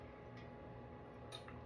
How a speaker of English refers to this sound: First, let me take a sip of my oat milk latte.